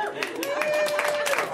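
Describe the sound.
An audience at a comedy show at UCB claps in answer to being asked who is disappointed in how their lives have turned out, a brief, steady patter of overlapping hand claps, moderately loud, with a single sustained tonal note, like a held whistle or voice, running through the middle.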